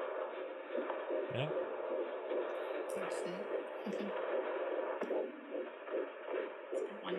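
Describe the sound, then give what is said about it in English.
A baby girl's fetal heartbeat, at a rate of 150, on a doppler monitor placed on the mother's stomach: a fast, rhythmic whooshing pulse buried in a steady, muffled static hiss, fairly loud and continuous for several seconds. “But this time, they literally put the contraption on my stomach and it was immediate. Immediate. That's her heartbeat.”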